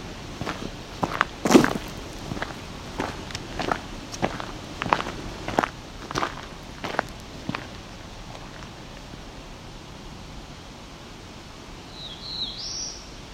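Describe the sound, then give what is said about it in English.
Black-throated blue warbler call: a brief, sharp, high chip near the end, following a run of steady crunching footsteps that fade out. No talking. “There's a very clear version of the call there.”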